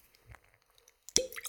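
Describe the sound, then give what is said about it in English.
A soft, muffled pop as a cork is pulled from a previously opened, unsealed whiskey bottle, a single short burst with a brief hollow ring, after a second of faint handling rustles. “So it's not a sealed bottle, but see if it'll pop anyway.”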